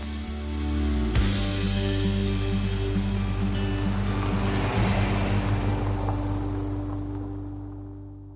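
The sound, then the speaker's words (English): Water washes and laps steadily against the edge of the Murray Rose Pool, a harbour ocean pool at Redleaf in Sydney, on a grey day, a continuous wash, with a low droning hum running underneath throughout and no voices. “We're at the Redleaf Pool, the Murray Rose Pool in Redleaf.”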